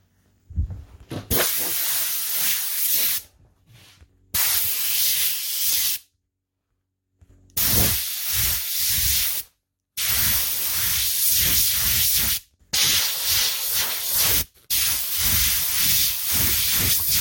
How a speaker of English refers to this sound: Now, this side is done. It's also already very smooth. The thing I almost forgot is dusting it off again with the pressured air.